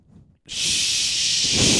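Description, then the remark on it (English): A voice imitates the white noise that Tita sleeps to: a long, steady shushing hiss, starting abruptly after a brief quiet moment and holding loud and even for over a second. “I was doing those noises that Tita sleeps to.”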